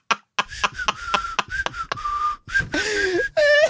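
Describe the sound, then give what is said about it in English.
Whistling with the mouth wide open, down the middle of the tongue: a choppy little tune, short breathy notes broken by clicks, then a longer sliding tone and a warbling finish. No talking. “That's me whistling down the middle of my tongue.”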